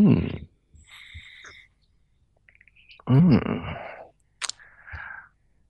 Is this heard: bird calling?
yes